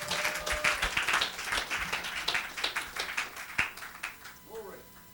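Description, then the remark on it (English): A crowd claps hands in praise of the Lord as a singer comes up to sing, a dense, steady patter of overlapping claps, with a few voices calling out faintly underneath. “Give the Lord a hand of praise as he comes to sing right now. Come on, clap your hands.”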